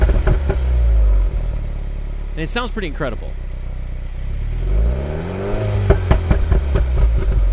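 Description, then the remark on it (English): A car engine revs up in sport mode with the exhaust flap closed, its pitch sweeping upward and falling back in rising and falling pulls, loud, with a man speaking briefly over it. “Now I put the sport, flipped it over into sport mode. The exhaust is still closed.”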